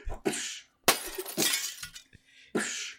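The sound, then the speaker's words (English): A person breaks every sugar glass car window in several loud, crashing bursts, each smash followed by a tinkling spray of falling shards, with short pauses between the hits and no talking. “He's breaking all the windows. He's breaking every window.”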